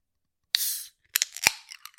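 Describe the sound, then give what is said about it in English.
A beer can, all white with black and gold and an elephant on the front, cracks open with a sharp pop and a brief bright hiss of escaping gas, followed by a quick run of small clicks and fizzy crackles. No one speaks. “And there's an elephant on the front of this one. But let's open it.”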